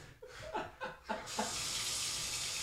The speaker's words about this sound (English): How do I turn your shower on? You turned it on.